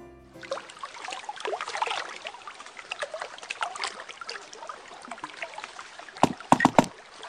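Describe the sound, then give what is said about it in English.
Warm mulled cider bubbling and sloshing in a bathtub set up in an ice storage, a steady gurgle of liquid with a few sharper, louder bubbling splashes near the end. No one speaks. “Wassail, did you turn the ice storage into... a warm, bubbling bathtub of mulled cider?”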